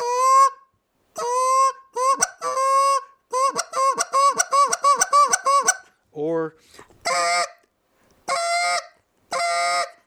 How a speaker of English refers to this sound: I mean, you hear geese going in to the water. If it's in the springtime, they're going to be making a completely different set of notes. But in the fall, all you're hearing whenever they're going back to water is.